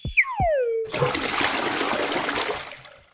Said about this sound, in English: Once you're in the bathroom ready to go, your bladder walls contract and your sphincter, the muscle that guards the exit from your bladder, relaxes. The urine then flows from your bladder out of your body through your urethra.